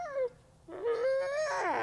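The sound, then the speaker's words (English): Two ambassador wolves, Nikai and Aleowa, howling: a short falling note followed by a long, steadily rising howl that wavers and climbs toward the end, with no talking. “Those howls you're hearing now are the two ambassador wolves we met earlier, Nikai and Aleowa,”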